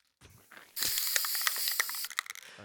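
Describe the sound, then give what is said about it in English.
A spray paint can hisses in a steady, bright burst lasting over a second while being spun, broken by quick rattling clicks as the can spins, after a brief mechanical rattle at the start. No one speaks. “And we're going to spray our spray paint.”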